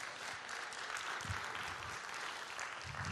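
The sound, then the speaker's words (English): A crowd applauds steadily, a dense wash of many hands clapping at even volume for a few seconds, without any voices on top. “Come on, can we give him a good round of applause today?”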